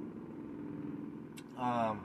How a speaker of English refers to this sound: Oh, wow. I can even hear the helicopter.